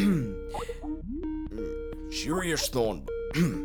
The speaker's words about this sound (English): Is it still ringing? Yeah, it's still going.